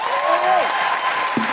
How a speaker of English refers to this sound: Big round of applause